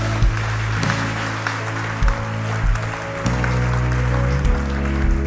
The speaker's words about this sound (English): Come on, if we're going to clap him, why don't we really clap him? He is our champion.